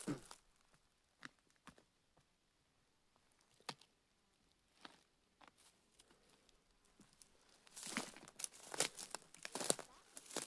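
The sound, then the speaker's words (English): Dry crunching and crackling underfoot as someone hikes over brittle forest debris, scattered at first, then a dense burst of louder crunches near the end, unaccompanied by talk. “Man, this is a jackpot podcast for people who like crunching sounds.”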